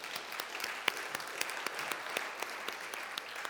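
A small group applauds steadily, many overlapping hand claps forming a dense, bright patter at moderate volume, with a few sharper claps standing out, no voices.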